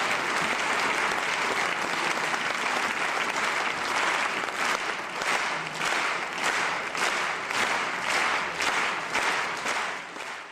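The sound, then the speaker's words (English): A crowd applauds in a dense, steady roar; then one person begins clapping slightly louder and slower, and the rest quickly follow, settling into unison, rhythmic clapping with evenly spaced, regular beats through the second half. “One person starts clapping slightly louder and at a slower pace, and immediately the rest start to follow.”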